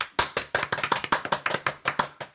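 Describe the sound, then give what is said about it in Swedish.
A brief, light round of applause from what sounds like just a few people: about a dozen sharp, crisp claps in a quick, slightly uneven rhythm, with no voices. “Och då förstår vi vad det innebär och ger en liten applåd här.”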